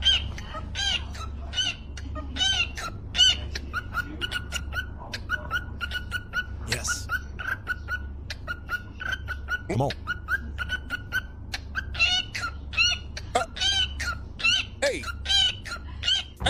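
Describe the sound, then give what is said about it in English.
A cockatiel chirps and whistles in quick, shrill bursts, repeating in a bouncy rhythm over a low, steady hum, with a person briefly speaking partway through. “Yeah, here's a cockatiel on the beat.”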